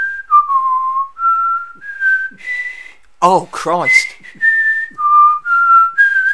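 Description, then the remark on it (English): Someone whistles the Star Spangled Banner, a slow, steady melody, clear, with long sustained notes, briefly interrupted midway by a short spoken exclamation before the tune continues. “I was like, why are you whistling the Star Spangled Banner?”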